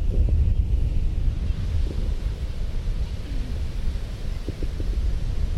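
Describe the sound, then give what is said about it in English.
Strong wind buffets the microphone over a steady, low roar of Pacific Ocean surf at a California beach, a continuous rumbling wash with no voices or distinct breaks throughout. “Particularly in California's beaches, you know, facing the Pacific, what is hopefully a shipless ocean, and you could just see ocean, but this is America after all.”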